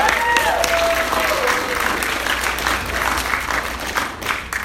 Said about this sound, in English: Actually, we're going to have a round of applause for all those women. That would be awesome.